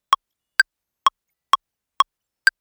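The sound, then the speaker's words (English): A metronome ticks six times at a steady, fairly brisk tempo, its crisp clicks alternating between two slightly different pitches, heard alone with silence between beats. “In this case, it was as if inside each cell, a metronome was ticking away.”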